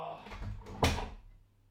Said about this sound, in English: You just shut the door behind you. That would be a great help. Yep. Oh. Door.